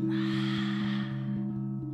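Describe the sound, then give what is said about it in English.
A single audible, airy exhalation fades out over about a second, over a steady low humming drone with a faint pulsing beat. “Exhale any audible exhalations you prefer.”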